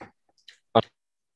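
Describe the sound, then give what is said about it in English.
Sound cuts out to near silence during technical difficulties, broken only by a few brief, muffled bumps and rustles as a man shuffles around too much, like a microphone being shuffled or handled. “Can't hear you. Technical difficulties. He's shuffling around too much, guys.”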